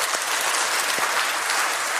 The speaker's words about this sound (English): If I hold up four, I need you to just really, for real, clap.